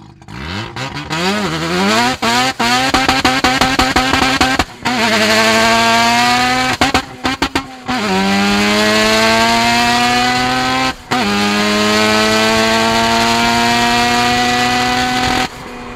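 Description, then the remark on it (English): A loud car engine, recorded with a tailpipe microphone attached to the car, roars through repeated rising revs and gear shifts, with sharp upward pitch sweeps, brief drops between gears, and a steady throaty rumble throughout. “So this is a tailpipe mic from the same performance, but this is attached to the car.”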